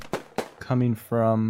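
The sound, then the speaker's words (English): Two quick, sharp gunshot-like cracks ring out, followed by a voice making drawn-out buzzing tones, as if someone is imitating gunfire with their mouth. “You guys hear an outrageous amount of gunfire.”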